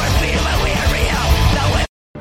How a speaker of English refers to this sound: Oh, those are the screams I used to make when I would cut myself shaving before I knew about Manscaped. Oh, yeah. Thank you, Manscaped, for turning my loud shrieks here into multiple peaks.